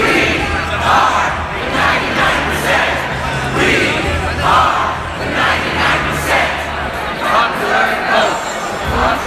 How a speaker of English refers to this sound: This takes a few hours, so to keep the crowd energized, Sanders staffers come around every few minutes to lead a series of cheers.